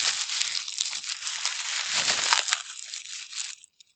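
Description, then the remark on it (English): Loud crinkling of bubble wrap being crumpled rapidly and continuously in front of a microphone for a few seconds, a dense crackly rustle that stops abruptly, with no voices. “Is your mascot some cellophane that you're frantically crumpling in front of your microphone?”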